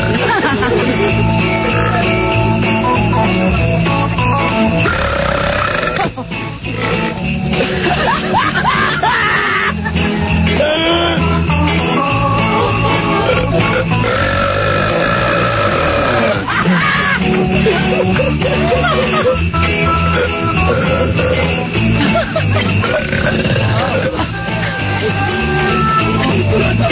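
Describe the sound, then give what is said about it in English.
Loud, drawn-out belches from a person follow one after another almost without pause, raw, their deep rumbling pitch rising and falling over nearly half a minute. “Nobody wants to hear you talk, just belch.”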